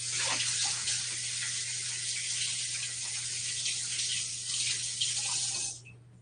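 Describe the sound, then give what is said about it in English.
A steady rush of running tap water pours for about six seconds as someone quickly washes their hands, a broad hissy splash with faint hand movements in the stream, then the flow cuts off abruptly. No one speaks. “Just gonna wash my hands really quick.”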